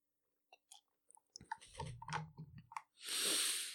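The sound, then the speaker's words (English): A quick sip of water: a few small wet clicks and gulping mouth noises, then a short, breathy exhale at the end. No one speaks. “Little quick sip of water and on to quick quotes.”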